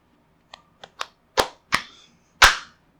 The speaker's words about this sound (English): All right, let's do a high five. Let's do an audio for the audio. There you go. That was very pleasing audiographically.